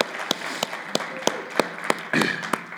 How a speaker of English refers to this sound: Could you just applaud the Lord one more time? Amen. Amen.